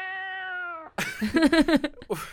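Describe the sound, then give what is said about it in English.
A cat lets out a loud, drawn-out yowl in several wavering, pulsing bursts, following a brief steady held tone. “I've got to find a cat that makes that massive sound now.”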